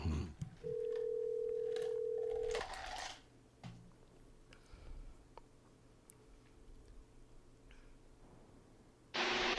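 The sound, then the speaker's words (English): A single long, steady ringback tone of a phone call on speakerphone to the speaker's mother, followed by quiet low hum with faint clicks, then a sudden loud burst of noise at the very end. “If there's one parent I can count on to answer the phone, it's my mama, because my daddy don't answer shit.”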